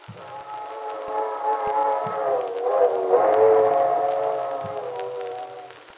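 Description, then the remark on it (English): An old train whistle sounds one long, chord-like wail that swells and dips slightly in pitch midway, then slowly fades, with faint low rumbling underneath and no voices, heard from a porch. “You know, listening to that old train whistle gives me the feeling you get sitting inside by a fire in the winter when it's snowing outside.”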